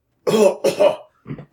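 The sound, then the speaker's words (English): A brief, loud coughing fit: two harsh, throaty coughs in quick succession, then a softer third after a short pause, with no talking. “Okay, Wolfgar starts coughing.”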